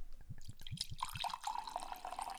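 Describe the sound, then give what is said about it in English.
A drink is poured into a glass: a few quick glugs and drips, then a steady, rising stream of liquid filling the glass, with no voices. “I like how you describe what as I'm pouring it.”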